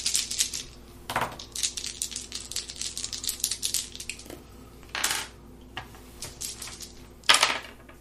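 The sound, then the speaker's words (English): Dice rattle and clatter across a hard surface in a busy flurry of small clicks, with a few sharper, louder tumbles standing out, as players roll for travel on a journey through borderlands. No one is talking. “So roll for travel advantage.”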